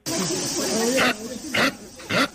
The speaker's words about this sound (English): I have found this sound of a capybara online.